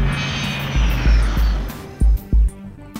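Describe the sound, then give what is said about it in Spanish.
A Learjet 35 business jet, a fast, luxurious aircraft for up to 8 passengers, roars with a high turbine engine whine that slowly winds down, while several heavy low thuds land near the end. No one speaks. “habían comprado un Learjet 35.”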